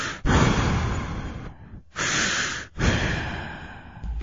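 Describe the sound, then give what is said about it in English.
A voice imitates Darth Vader's heavy, raspy masked-respirator breathing, as in a Burger King commercial where the King and Darth Vader breathe heavily at each other: several long, hissing inhales and exhales in a slow, steady rhythm, loud and close to the microphone, with no talking. “there was one where the king walks up to Darth Vader with a burger, and they're just breathing real heavy at each other.”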